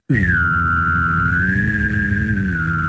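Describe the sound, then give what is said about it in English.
A person hums and whistles at the same time: a steady, buzzy low hum under a bright, high whistle held for about three seconds, the whistle's pitch wavering gently. No talking. “It's a hum and a whistle simultaneously.”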